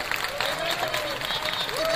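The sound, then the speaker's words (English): An audience claps steadily for two seconds, a dense, even wash of many hands. A thin high tone, like a voice or whistle, drifts over the clapping and rises near the end. “Give her a round of applause for having that joke, everybody!”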